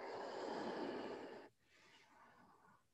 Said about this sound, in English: Up dog. Down dog. Deep breathing.